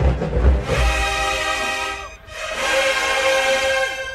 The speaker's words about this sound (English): Woo, come on, trumpets.